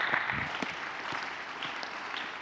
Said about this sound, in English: You're not clapping your hands well.